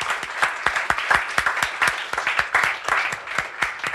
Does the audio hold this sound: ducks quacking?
no